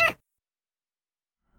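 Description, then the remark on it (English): A single short, sharp cat meow at the very start, fairly loud, followed by silence and a faint low rumble near the end. “Hey, does your dog need a pet cat?”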